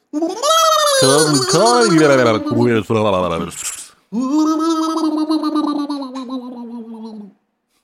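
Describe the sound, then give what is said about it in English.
A voice imitates the gurgling water ghosts of a haunted river, producing loud, warbling, bubbly vocal tones in two long bursts separated by a short pause, with wavering pitch and a throaty, liquid quality. “Were you actually gurgling?”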